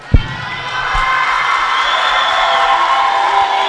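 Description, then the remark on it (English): An audience roars with steady, loud cheering and shouting for the whole stretch, clapping for a man, with a few sharp claps near the start blending into the sustained noise. “Give the Lord a hand clap for this man.”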